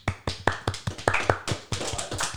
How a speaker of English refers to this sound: Everyone clap it up.